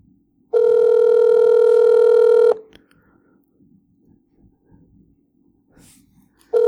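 A phone line rings out on an outgoing call that goes unanswered: one steady two-second ringback tone, about four seconds of near silence, then the next ring beginning as it ends. Clear, no talking.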